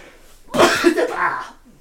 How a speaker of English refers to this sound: And I'm about to sneeze. I'm about to sneeze.